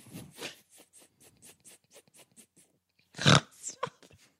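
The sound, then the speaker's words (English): A long, growling fart made of a rapid train of rough, buzzy pulses that swells into one loud blast before trailing off in a few short sputters. “It went and growled like a tiger.”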